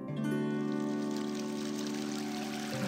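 Continuous trickling, flowing water runs steadily for a few seconds at a moderate level, layered over a sustained humming tone. No one speaks.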